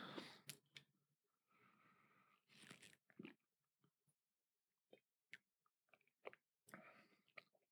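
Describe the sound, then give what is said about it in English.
Gulping of water, two wet swallows with small mouth clicks and smacks between them, fairly quiet and with no talking. “That was two gulps, not a sip.”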